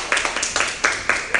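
A crowd claps together in a steady burst, with sharp, bright hand claps landing in a rough rhythm over a continuous wash of applause, moderately loud and with no talking over it.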